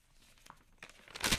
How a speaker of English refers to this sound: Toilet paper. Oh my god. Let's talk about toilet paper, you guys. Holy shit. I can't believe I forgot the toilet paper.